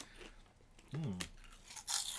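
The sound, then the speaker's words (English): A dog crunches a chip topped with shredded seaweed, with a couple of crisp, brittle crackling bursts toward the end, after a brief voiced murmur from a person in the middle. “You want to try one of these? He's giving a sniffs. He's put it in his mouth.”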